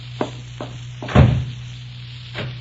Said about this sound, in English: Oh, excuse me for banging the door.